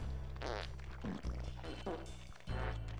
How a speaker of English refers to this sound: Bro. Do you hear the farts? Yeah, I hear the farts. What is going on?